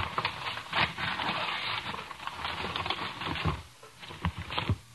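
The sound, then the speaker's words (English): Wrapping paper being torn off a Christmas present box, a steady run of crackling rips and rustles lasting several seconds with brief pauses between bursts. Nobody speaks. “You can take the wrapping paper off, but you can't open the box.”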